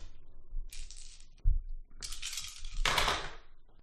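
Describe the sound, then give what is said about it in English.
Eight dice clatter and rattle, a brief shake followed by a bright skittering tumble across a hard surface, moderately loud, with a low thump partway through and no voices. “I'm going to take 4 points from my combat pool and put it into my firearms, which is 4, so I'm going to roll 8 dice.”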